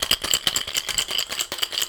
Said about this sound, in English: And so you're going to, you know, put that top on your shaker really good. Shake that up.